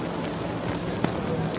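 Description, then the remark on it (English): Heavy rain pours down in Houston, Texas, in a dense, steady hiss that fills the space evenly, with one brief sharp tap standing out partway through and no clear speech. “Well, Sophie, as you can see, it's still raining hard, and this rain shows no sign of letting up.”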